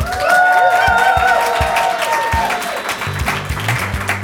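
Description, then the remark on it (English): A live audience of dozens at a show recorded in Miami claps steadily and loudly throughout, with a few high whoops and cheers rising above the applause early on before it settles into dense clapping. “It's a crowd of dozens.”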